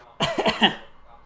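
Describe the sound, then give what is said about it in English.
A short, dry cough: a quick cluster of about three rasping bursts, fairly loud, with no talking around it. “Got a bit of a dry cough here.”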